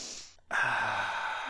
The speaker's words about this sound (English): I'm doing Sword and Shield Brilliant Stars with a normal or grass type. It looks like Whimsicott or something. Something. Anyway, it's time for the sniff.